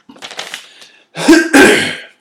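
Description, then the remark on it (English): A man clears his throat, a soft rumbling start followed by two loud, raspy bursts of hacking, with no talking. “Let me clear my throat for this, ladies and gentlemen.”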